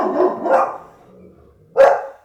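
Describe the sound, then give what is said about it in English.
A dog barks three times at a boat: two quick, mid-pitched barks in a row, a short pause, then a single louder, sharper bark. No one speaks. “It's a boat. It's always a boat.”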